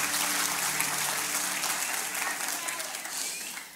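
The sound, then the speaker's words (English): The Calvary Church audience applauds and cheers for Jesus, a dense, steady wash of clapping with voices mixed in, holding loud for several seconds and easing slightly toward the end. “Can you make some noise for Jesus one more time?”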